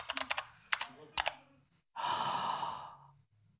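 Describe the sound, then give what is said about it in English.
A short, irregular burst of sharp clicks from typing on a computer keyboard at night while searching online, followed after a brief pause by a long, breathy sigh. No one speaks. “I ate my 2-minute korma over the keyboard and Googled Big Sue”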